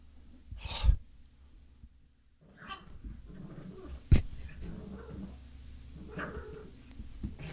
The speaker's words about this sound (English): Listen to the dog. This dog is losing his fucking nerve. The dog is losing her mind. Just go to bed.